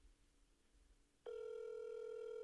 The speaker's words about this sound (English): We need to be happy this phone is ringing. Woo! This don't normally don't ring.